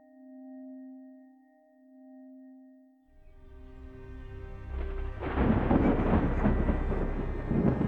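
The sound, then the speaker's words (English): A soft sustained tone fades out, then a winter storm sweeps in: low rumbling thunder and rushing wind and rain build quickly into a loud, dense roar with no voices. “Ruby wasn't going to let the winter storm outside ruin her evening routine.”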